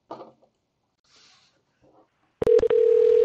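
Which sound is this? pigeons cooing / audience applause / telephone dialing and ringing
telephone dialing and ringing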